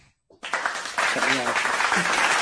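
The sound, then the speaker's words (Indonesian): Hands clap in a steady, dense burst that starts abruptly after a brief silence and continues to the end, fairly loud, with voices talking over it. “Aku dah tepuk dah tadi tu.”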